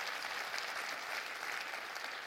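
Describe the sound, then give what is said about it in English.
An audience claps their hands together in rejoicing, a dense, steady wash of applause, many overlapping claps blending into a continuous bright patter that holds at an even level without voices. “Let's clap our hands and rejoice in that.”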